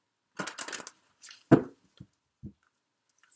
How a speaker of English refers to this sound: I'm going to go ahead and just shuffle a little bit more, Sag, even though I have already shuffled the deck, but it just helps me tune into the energies around you during this time period.